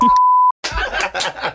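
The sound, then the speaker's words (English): A steady, high-pitched censor bleep lasting about half a second, covering a spoken last name, followed by a brief silence and then a burst of lively laughter and chuckling. “So if you just heard some beeps, that's because we just dropped our producer's last name a couple times.”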